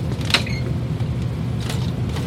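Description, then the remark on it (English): A small crawlspace door creaks open with a short, high, strained squeak near the start, over a steady low rumble. Nobody speaks. “there were no objections from the two spirits about Renee opening the crawlspace door. So he did.”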